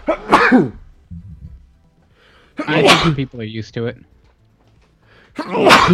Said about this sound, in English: We're gonna have to start this again. I'm about to make a big sneeze.